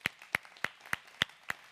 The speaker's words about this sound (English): If you are a first-time guest here today, we want to celebrate you. And we do this by simply clapping for you. So can we bless our first-time guests?